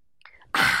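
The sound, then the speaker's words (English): A sip from a glass of water: a few faint wet mouth sounds, then a sudden loud, hissy slurp of air and liquid lasting a moment. “I have a glass of water in my hand. I'm having a sip.”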